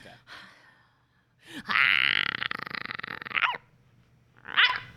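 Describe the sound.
A person imitates a small yappy dog barking, loud: a brief yip, then a long strained, growly whine-bark, and one short sharp yap after a pause.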